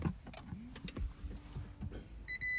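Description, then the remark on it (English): A hybrid car starting up quietly: scattered mechanical clicks, a soft low electric hum that rises and then holds steady, and a short run of high-pitched dashboard beeps at the end. “Well, that wasn't a very dramatic sound, was it? Come on, silly hybrid.”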